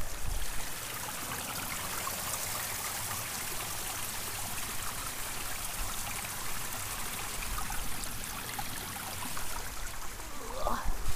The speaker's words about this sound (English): Listen to this waterfall, y'all. And look, actually, you haven't got enough waterfall sounds yet.